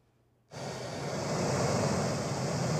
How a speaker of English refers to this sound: Okay, so this is white noise. Are you ready?